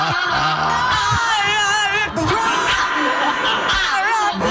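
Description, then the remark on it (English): A French bulldog howls loudly and continuously, its warbling, wavering high-pitched voice rising and falling like an opera tenor's, with scrappy rumbling noise underneath. “And that French bulldog doing his best imitation of an opera tenor.”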